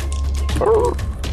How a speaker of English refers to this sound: I'm going to get a little sound effect of a puppy getting hit. Don't worry, there'll be another one.